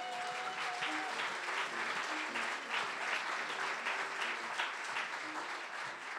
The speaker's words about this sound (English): Okay, give a big round of applause to the first storyteller.